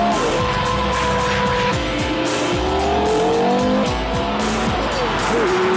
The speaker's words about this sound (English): Listen to that engine! It's a 5.7 litre V10. Originally designed for racing, but now it's in a road car and the effect is absolutely mind-blowing.